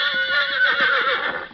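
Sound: horse neighing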